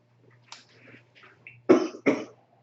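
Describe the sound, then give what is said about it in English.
Two sharp, harsh coughs in quick succession from someone who has been smoking weed, loud, preceded by a few softer throaty rasps and breaths, with a low steady hum underneath. “No, I got the contact cough.”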